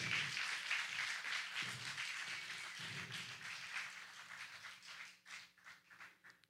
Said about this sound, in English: But there is power in your praise. Singers, musicians, would you come? Would you give the Lord a mighty hand clap of praise?